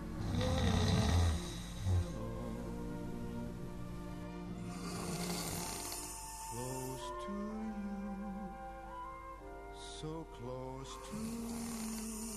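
A man snores in his sleep at 1 a.m., a deep, rasping snore that is loudest at the start, with steady sustained tones playing softly underneath.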